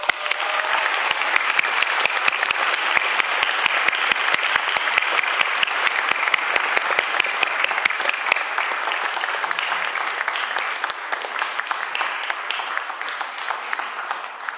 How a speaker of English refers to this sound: Please welcome them with a warm round of applause.